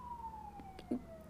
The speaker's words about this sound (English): Oh, you hear the sirens.